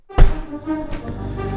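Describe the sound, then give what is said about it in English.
A hand bangs hard on a tabletop, a loud thud followed a moment later by a second, softer knock, with a faint ringing resonance afterward. “All right, let's have you bang the table.”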